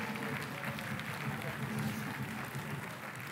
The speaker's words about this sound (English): Give them a clap. Give them a clap as they're doing it. Come on, come on, join in.